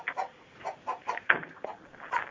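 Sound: chicken clucking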